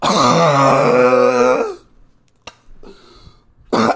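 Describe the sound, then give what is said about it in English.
A long, strained voiced exhale gives way to a short quiet pause, then a couple of forceful, deliberate coughs after holding the breath, done to clear the lungs, the last one loud, with no talking. “Hold your breath for 2/3. In the cough slope.”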